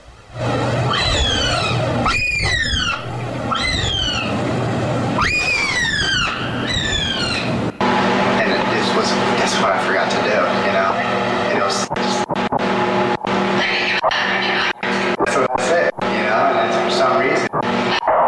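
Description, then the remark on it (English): A looped, rattling clack pattern smeared by a sweeping, whooshing flanger effect that rises and falls in repeating waves, then turns into a dense, loud stream of sharp clicks and hits. “So here's a flanger.”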